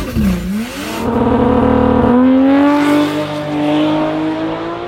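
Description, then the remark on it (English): A Barra turbo car engine revs hard, its pitch dipping and then climbing steadily in a loud, sustained wail with a harsh, raspy edge typical of a turbo engine with external wastegates. No one speaks. “From those external gates that just sound like complete horseshit.”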